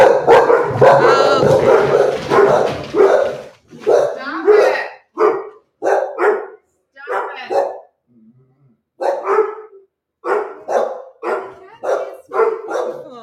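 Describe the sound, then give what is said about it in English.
A dog growls and then barks in a rapid string of sharp, loud yaps, with brief pauses between bursts and a low rumble starting things off. “Why are you growling at, Mommy?”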